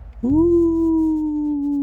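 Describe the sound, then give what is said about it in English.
A voice imitates a long, drawn-out howl, as of the wind or a creature out in the distance: one steady, wavering tone that swells quickly and holds for well over a second, fairly loud, with no other talking. “You're not sure if it's the howling of the wind or the howling of a creature, but you hear maybe something kind of...”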